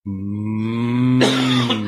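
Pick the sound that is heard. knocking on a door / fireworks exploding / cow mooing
cow mooing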